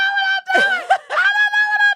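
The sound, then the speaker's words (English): A voice imitates screaming while playing video games: a loud, high-pitched sustained shriek, broken twice by short breathy, wavering bursts before the shrill tone resumes. “I'll convince her to get on a joystick, and she's screaming the whole time.”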